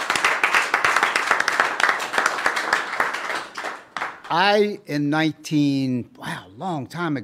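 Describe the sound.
A crowd applauds a man invited up to the front, with steady, dense clapping for about three and a half seconds, then the clapping fades as a single voice begins speaking.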